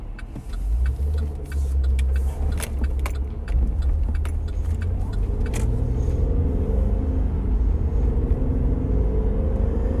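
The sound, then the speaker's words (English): A car engine hums steadily from inside the cabin while driving, a low continuous rumble with scattered light clicks and jingles over it, like keys rattling; the car has had its vapor canister part replaced. “Car runs so much better now.”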